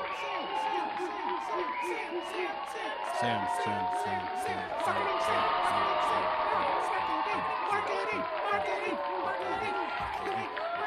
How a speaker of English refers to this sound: Give it a long one. This is a 20-second applause, and I will not stop it.